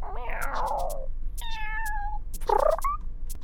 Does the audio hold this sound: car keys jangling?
no